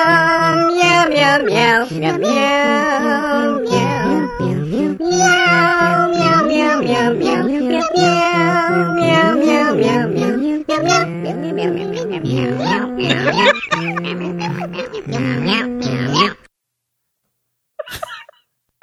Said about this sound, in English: So let's give it a listen. The caroling SWIC cats are back. Meow, meow, meow, meow.